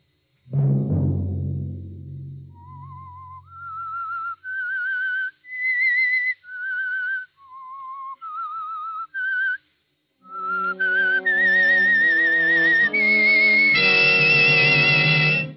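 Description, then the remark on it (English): The eerie whistled theme of the CBS radio show The Whistler: a deep low chord fades into a lone wavering whistle of separate rising and falling notes, then swelling orchestral chords join beneath a high, sustained whistled tone. “Have you heard the strange tales of the Whistler?”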